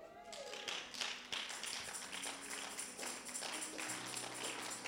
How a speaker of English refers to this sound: Your clapping may not be exciting, I know.